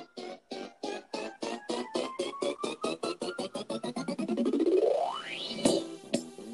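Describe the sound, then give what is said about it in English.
A stretch of electronic music from a song: pulsing beats speed up steadily while a synth sweep climbs in pitch to a peak, then breaks into a sharp hit. Loud, with no voices. “To the anthem for the aunties out there, you know, this when they hear this song, when they hear this part come up.”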